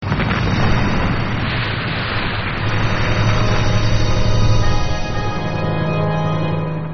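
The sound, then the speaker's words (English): A massive atomic explosion, ignited by a lightning strike and watched from about 20 feet away, roars continuously, a loud, dense wall of rumbling blast noise with deep low-end thunder that sustains for several seconds without letting up. No voices are heard. “Just then, lightning strikes the mad doctor and his monster, igniting a huge atomic explosion that everyone watches while standing 20 feet away.”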